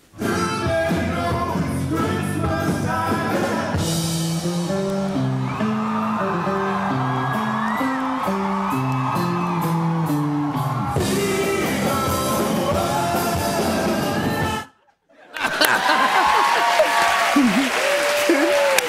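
A live rock band plays loudly at Roseland Ballroom in 2002 with a roaring crowd beneath it, then cuts out briefly before a burst of loud cheering and applause erupts.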